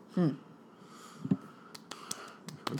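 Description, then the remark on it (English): Two short coughs, the first rough and throaty, the second about a second later, followed by a few faint sharp clicks and shuffling noises. “And on that coughing note, what should we call this episode?”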